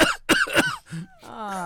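Three quick, harsh coughs in a row, close and fairly loud, followed by a thin, squeaky wheeze that trails off at the end.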